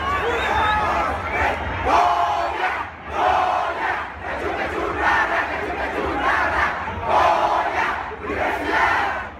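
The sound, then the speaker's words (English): A large crowd of Pumas football fans chants loudly in unison while gyrating their arms and pumping their elbows, voices rising and falling in a steady repeating rhythm, with a high whistle noise at the start over the roar. “They had this interesting kind of chant thing where they kind of gyrated their arms in the air and did a whistle noise and then kind of pumped their elbow a little bit, and it was all in unison, and it was quite an intimidating sound.”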